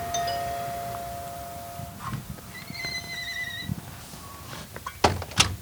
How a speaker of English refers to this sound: Then you stop in front of an old storefront. It doesn't look like much on the outside. I mean, in fact, it looks like nothing at all. Until you open the door.